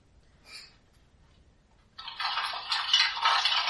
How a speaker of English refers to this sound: No, it's sound bones. Human bones that move on their own. The rattling of bones